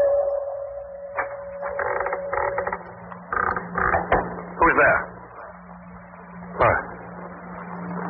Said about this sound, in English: I saw that door open.